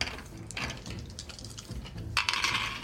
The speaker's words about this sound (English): Everyone make a roll against your soul score, please. Use 2 8-sided dice.